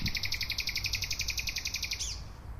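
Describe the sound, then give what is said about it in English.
A nightingale sings a rapid, evenly pulsed run of bright repeated notes, ending in a quick swooping flourish, clear over a low hum of city traffic, at night near oak trees in the Tiergarten in Berlin, about 50 meters from the presidential palace. “This is one of the favorite places that nightingales stay for the 6 weeks or so that they're here.”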